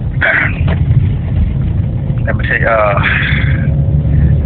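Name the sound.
car interior driving rumble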